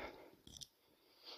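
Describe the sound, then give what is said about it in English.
A couple of quick, light, quiet metallic clinks of pound coins being counted, followed by a soft faint rustle against a low background hiss. “Sorry, I'm just counting up my pound coins. I've got loads.”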